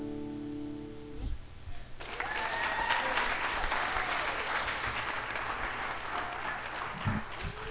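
A held musical note rings out and stops, then a crowd bursts into steady, dense applause that continues loudly for several seconds, a thick wash of overlapping clapping.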